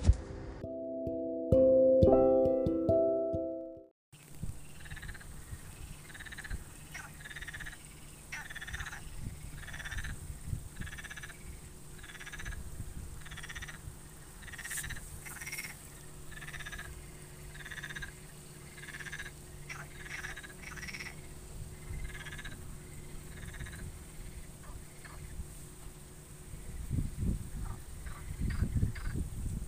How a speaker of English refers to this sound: I think there's about four frogs or toads below me on the bank of this swimming lake. That's very cool. I thought they were ducks at first, but that seems to be like a froggy toady sound. But I can't see them because they're in thick grass.